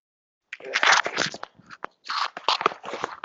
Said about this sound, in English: A couple of dogs got into a fight.